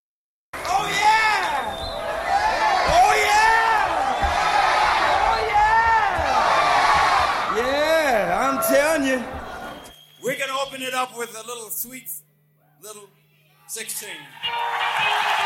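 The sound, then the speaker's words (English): A large live concert audience roars and chants in unison, screaming a sing-along of 'go, Johnny, go' on the performer's cue, loud and sustained for about ten seconds, then cuts to a quieter passage with a man talking over sparse instruments. “I mean, all he had to do was say, go, and put his hand up to his ear, and the audience would all scream, go, Johnny, go, go.”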